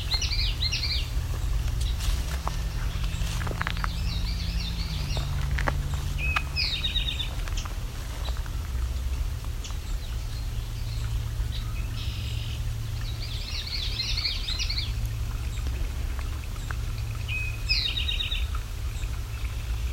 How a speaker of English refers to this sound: Very active with red-winged blackbird, eastern towhee, common yellow throat. So we just came through a swampland.